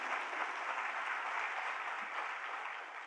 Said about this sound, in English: So before I even start, I just want to have a huge round of applause for the many, many volunteers that make this happen from week to week.